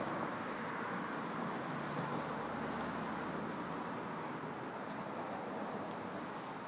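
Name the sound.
street traffic ambience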